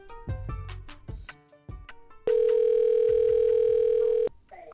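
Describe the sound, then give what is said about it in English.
A steady electronic telephone ring tone of a phone call to NFL receiver Larry on the show Three Things holds for about two seconds, loud, following a few sharp percussive hits, then cuts off abruptly. “Oh yeah, and at the time of this phone call, Larry had just sunk a hole-in-one while golfing with former President Barack Obama.”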